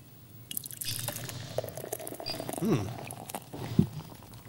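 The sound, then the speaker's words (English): Beer pours steadily into a glass, with a hissing, bubbly wash, a few gurgling glugs and small rising tones as it fills, fairly quiet. “Pour us that beer”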